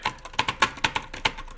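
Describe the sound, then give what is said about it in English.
Quick, uneven clicks of fingers typing on a computer keyboard, about a dozen sharp keystrokes with no voices, coming in a brisk irregular rhythm. “Well, hold on one second while I get into the computer here.”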